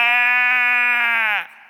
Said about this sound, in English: What's the bleating of sheep I hear?